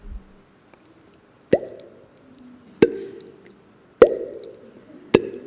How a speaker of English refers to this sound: It started to rain. It didn't stop raining for 40 days.